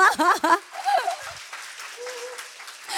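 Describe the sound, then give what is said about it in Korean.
A voice speaks briefly, then an audience breaks into a steady wash of clapping that carries on for a couple of seconds at moderate volume, with a faint voice rising over it. “여기서 박수가 터질 줄 알았는데 안 터지네요.”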